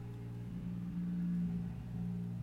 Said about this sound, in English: Apologies for the car in the background that couldn't afford a muffler.